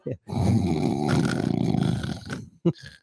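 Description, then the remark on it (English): A person imitates a loud, drawn-out snore with their voice, one long rattling inhale lasting over two seconds, followed by a short snort at the end. “Can you make a snoring sound?”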